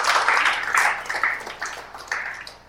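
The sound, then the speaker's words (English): Audience applause in response to being told they are accepted by God: a dense, steady wash of many hands clapping together, swelling in a few waves and easing slightly toward the end, with no voices over it. “You can clap to that, right?”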